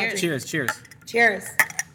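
Glasses clink together in a toast, two quick bright taps, following a few moments of voices murmuring.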